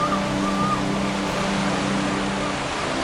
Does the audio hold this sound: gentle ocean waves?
yes